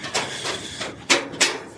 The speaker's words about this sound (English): Oh, they have actually. Oh, they are actually moving the train further down now.